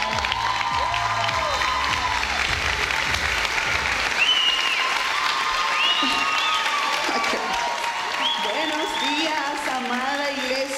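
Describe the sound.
Sustained audience applause at Presencia Viva, welcoming a woman pastor to speak. It fills the whole stretch, a dense steady clatter of clapping with scattered cheers and voices rising over it, loud throughout with a slight ease toward the end.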